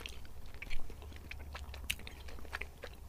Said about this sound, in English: Same deal for the chew there. White chocolate starts to disappear before you get to the actual finish the raspberry. Yeah, that's what I mean. It's like it's very melty.